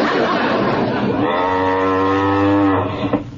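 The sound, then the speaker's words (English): A single long, loud cow moo, low and droning, swelling after a breathy start and holding steady for nearly two seconds before trailing off. “Where can that cow be?”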